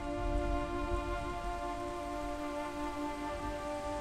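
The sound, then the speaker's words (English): Driving rain falls continuously, a dense hiss of drops on a surface, layered over a sustained droning hum that holds throughout, with no voices. “Driving rain will eliminate all the rest by dusk tonight.”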